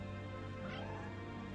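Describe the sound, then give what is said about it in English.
A dense, steady chorus of many cats meowing and yowling at once, crowding the steps around a sunken, theater-like area, their overlapping cries blending into a continuous wall of noise that stays loud throughout. “The steps themselves were overflowing with cats. And the noise!”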